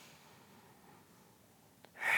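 Quiet, controlled breathing with a soft background hiss during a Pilates core exercise with both legs held up, ending in one loud, forceful breath through the nose and mouth. No one speaks.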